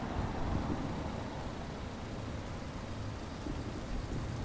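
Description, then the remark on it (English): A continuous, even hiss of steady rain with a low rumbling undertone, holding at a moderate level throughout with no voices or distinct individual sounds. “The crunch of the leaves were drowned out by the hiss of the rain.”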